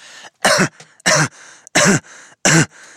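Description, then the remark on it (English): A voice imitates an exaggerated, ridiculous, theatrical cough: four loud, rasping, voiced hacks in an even rhythm, with short gaps of breath between them and no talking. “It sounded like a man deliberately coughing in the most ridiculous way that he could muster.”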